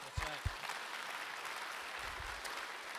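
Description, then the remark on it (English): An audience claps steadily, a dense, even wash of applause running throughout, with a couple of brief low thumps near the start and a faint voice underneath. “Ooh, y'all clapped to that.”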